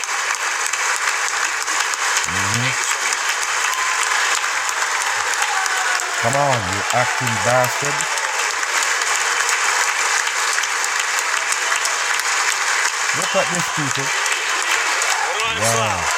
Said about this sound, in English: Wow. What is they clapping for, people?